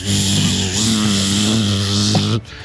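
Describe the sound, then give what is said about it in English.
A voice imitates a buzzing sound, a steady, loud, low-pitched droning hum held for over two seconds before stopping abruptly. “I start making a buzzing sound. It's a very strange sound.”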